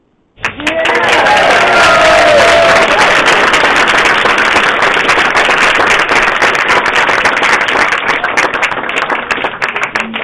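An audience breaks into loud, sustained applause that starts abruptly and carries on steadily for about ten seconds, with a few cheers or whistles rising out of the crowd early on.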